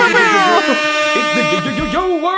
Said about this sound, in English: I kind of want to, I hope he has that sound effect. He can put it in, like that air horn.